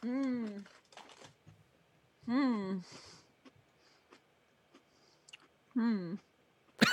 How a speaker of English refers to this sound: Crunch, crunch, crunch, crunch. I know, right? I'm just chewing.